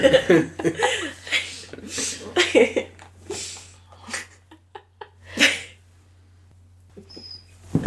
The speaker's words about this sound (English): Do you have a dog in here? What was that?